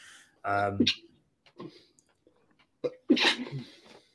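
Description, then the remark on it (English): A man sneezes loudly, a voiced wind-up snapping into a sharp burst, followed a couple of seconds later by another forceful sneeze-like outburst amid soft vocal noises. “He's sneezing.”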